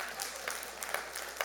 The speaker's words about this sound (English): I believe, yeah, you can clap.